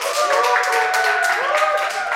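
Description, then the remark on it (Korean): An audience claps together at a speaker's request, a dense, unbroken patter of many hands at an even loudness, with a few voices calling out over it. “다 같이 박수 한번 쳐주실까요?”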